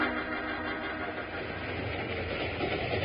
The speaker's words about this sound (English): when the train began to near Broken Wheel Grade